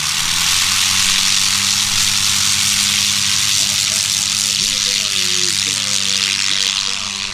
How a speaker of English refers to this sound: We are listening to the sounds of early 1900 biplanes.